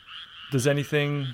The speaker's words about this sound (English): First one's easy. Okay. Would these be frogs? Correct, sir. These are frogs.